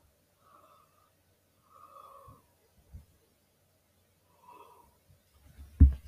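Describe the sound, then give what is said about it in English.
A person yawns, a few drawn-out, breathy vocal exhalations separated by pauses, quiet overall, followed by a short low thump near the end. “Sorry, I just yawned again.”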